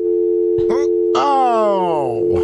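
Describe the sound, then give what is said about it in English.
A steady telephone dial tone hums continuously through the whole stretch after a call is hung up, loud and unbroken, while a voice speaks briefly over it partway through. “Oh, you just hung up on her.”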